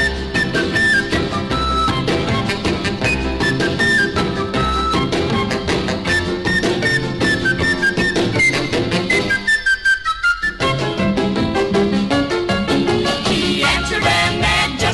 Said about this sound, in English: He lost an upper middle tooth, and it left a big hole that sort of looks uncouth. But he's never gonna worry, cause he gets a big hand every time he whistles with a rock and roll band.